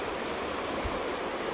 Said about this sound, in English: I've got the levels down because I'm sitting next to a really loud river. It's the Credit River.